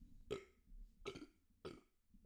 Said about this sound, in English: Got a burp.